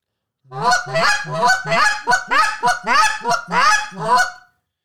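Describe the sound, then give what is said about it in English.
A goose call blown in a quick, steady run of double clucks, each made of two separate clucks, sharp paired honking notes repeated for about four seconds, loud with no talking. “like if I'm doing two clucks to make a double cluck, like two separate clucks, I'll have one cluck going out in front of me, and one out to the side / behind me.”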